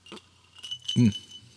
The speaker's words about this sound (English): I'm going to edit out that little squeaky sound when I took a sip. I always take one kind of gnarly sip, like take a rough sip just to get the alcohol in your mouth.